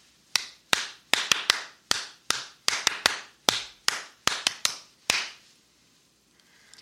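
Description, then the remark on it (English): Someone claps their hands about fourteen times in a brisk, slightly uneven rhythm, each clap sharp and crisp with a short echo, before the sound stops and quiet follows. “Bear King took a long slurp of coffee, smiled at the antics of his young friend, and gave him a first-class hand clap.”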